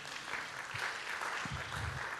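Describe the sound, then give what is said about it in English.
A church audience gives the Lord a round of applause: dense, steady clapping from many hands fills the whole stretch at an even level, with a faint low murmur underneath. “Come on, can we give our Lord a good round of applause?”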